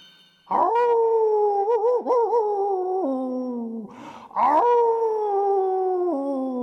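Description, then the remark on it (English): A loud, sustained wolf howl from outside rises sharply, wavers and slowly falls, then breaks off and swells into a second long howl, clear with no talking. “And again there came a threatening howl from outside.”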